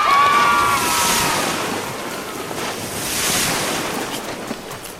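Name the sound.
ocean waves breaking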